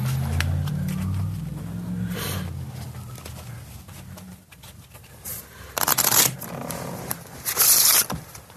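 A deck of playing cards is shuffled: after a low rumbling stretch, two quick, crisp riffling bursts come a couple of seconds apart, with no one talking.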